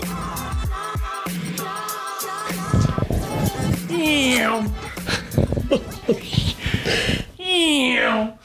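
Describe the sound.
A voice imitates airplane noises with repeated whining, swooping hums that slide up and down in pitch, growing louder and more sustained toward the end.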